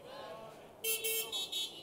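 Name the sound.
car horns honking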